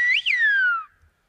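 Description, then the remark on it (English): A single piercing long-distance whistle of the Silbo whistled language by an expert whistler, rising briefly before sliding down in one long, clear glide for under a second, with no talking around it. “In Silbo, words and phrases are formed by varying the pitch of the whistle.”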